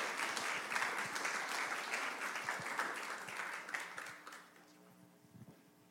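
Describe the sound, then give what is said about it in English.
A crowd claps warmly for a couple serving in Thailand as they come up to share their story, a dense patter of many hands for several seconds before tapering off and fading near the end. “who are serving in Thailand, let's have them come up and give them warm applause as they come, and they're going to share part of their story.”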